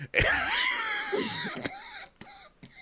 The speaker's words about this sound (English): Oh my God, I just smoker coughed into your face. So sorry, everybody